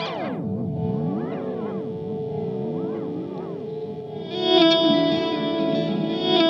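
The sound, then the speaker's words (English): Heavily processed guitar tones drenched in delay and reverb, both set 100% wet, notes smearing and echoing into a continuous swirling wash, swelling into a louder, brighter shimmering mass toward the end. No one speaks. “And this can go 100% wet on the decay, on the delay and the reverb. They'll both go fully wet.”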